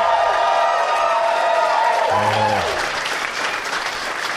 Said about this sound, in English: My applause better be bigger than that.